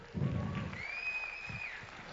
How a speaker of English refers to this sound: Yeah, the moms in the room are like, are you joking? That's as loud as you clap for that?